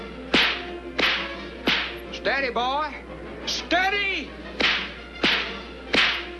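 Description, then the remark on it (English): Sharp whip cracks snap out at a steady, regular pace, six or so, loud, with a man's voice calling out between them. “Quit cracking that whip!”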